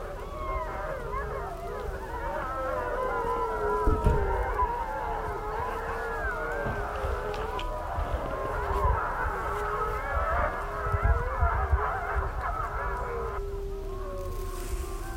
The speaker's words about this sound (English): If you've just tuned in, we're recording The Trail Less Traveled on the side of the road in Yellowstone National Park, and I'm observing a pack of wolves who are howling and playing with each other.